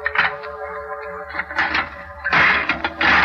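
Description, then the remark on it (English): A heavy old tomb door, its rusty lock just smashed, creaks open with a drawn-out, groaning squeal, followed by rough grinding and scraping bursts as it drags wider. Fairly loud, with no voices. “I opened the door.”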